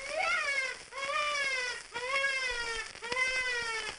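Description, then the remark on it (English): Four drawn-out squeaks blown on a hand-held deluxe game call, each blown easy, harder, easy, a strained, harmonic-rich wail that swells in the middle and tapers off, coming in a steady rhythm with brief gaps between. “Make the noise loudest at the middle of the squeak like this.”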